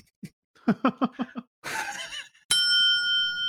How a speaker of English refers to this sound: That was a ding-a-ling, ding, ring-a-ling, bling. That's the Furt Bell.